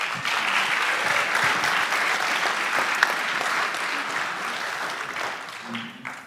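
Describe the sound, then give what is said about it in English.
A church audience applauds a man called up to preach that morning, in a steady, dense wash of clapping that holds at an even level for about six seconds, then begins to thin out at the end. “So everybody give him a round of applause.”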